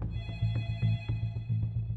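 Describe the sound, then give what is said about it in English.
A family's telephone in Norwood, North Carolina, rings on a Monday evening after supper, July 14th, 1986, with a rapid, trilling bell tone that pulses steadily for about two seconds, clear, with no voices. “It was Monday afternoon, and by the time we got through supper and everything, the phone rang.”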